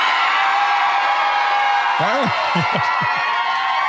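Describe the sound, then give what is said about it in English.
A large crowd at a Nikki Haley rally after the South Carolina race roars with broad, steady cheering throughout, and a few loud rising-and-falling whoops and yells break out over it in the second half. “Why are we all cheering?”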